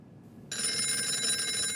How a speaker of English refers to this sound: Roland King's phone is ringing.